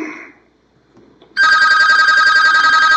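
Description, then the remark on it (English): After a brief quiet moment, a telephone starts ringing loudly and steadily, a bright, buzzy electronic trill that continues without pause to the end. “And we've got another phone call.”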